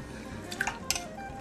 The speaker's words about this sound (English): So we'll take that over to my pan, my teppel, which is a pot. I pour in my 2 cups of water first, and then my fillet of haddock.